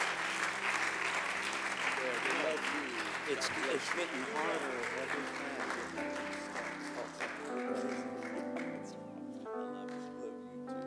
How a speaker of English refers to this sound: We want him to come tonight and preach the word of the Lord. Could you receive him with a great big hand clap?